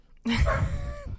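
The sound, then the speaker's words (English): A dog, Mitzi, lets out one loud, drawn-out vocalization, somewhere between a bark and a whining yelp, lasting about a second with no talking. “She is in every episode of the podcast at least once, barking or growling.”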